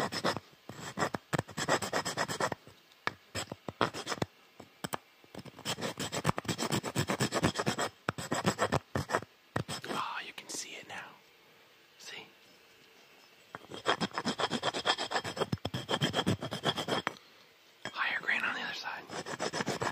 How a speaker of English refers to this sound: Sanding tools, let's get them out. We've got the highest grade one right here.